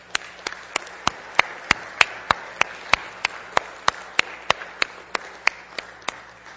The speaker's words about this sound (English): Can we just applaud and give thanks?